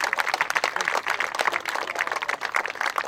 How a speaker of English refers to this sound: if you volunteer coach for this organization and these kids, raise your hand if you're in the crowd and you're a volunteer coach or you volunteered some way in this great, great league that we've got. Let's give those guys a round of applause.